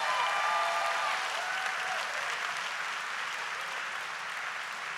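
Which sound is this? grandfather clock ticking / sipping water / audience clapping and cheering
audience clapping and cheering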